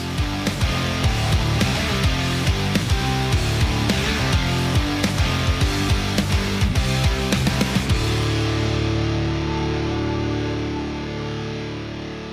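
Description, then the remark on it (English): A loud, distorted rock instrumental with a driving, steady beat plays for about eight seconds, then ends on a sustained chord that rings out and slowly fades. No voices. “The DataFam News soundtrack comes from ….”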